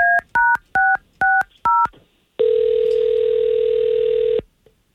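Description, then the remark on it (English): Five quick touch-tone beeps as radio morning show hosts at K92.3 in Central Florida dial a listener's number, evenly spaced, followed by a steady, loud electronic tone held for about two seconds. No voices. “We're going to call her and don't come on the phone until we actually talk to her first, okay?”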